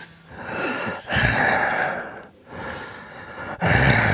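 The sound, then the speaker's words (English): Heavy, rasping breaths drawn in and pushed out in a steady rhythm, about four loud gasps with brief pauses between, someone panting into a phone after jogging. No talking. “please stop ringing me after you've been jogging.”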